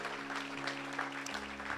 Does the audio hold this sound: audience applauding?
yes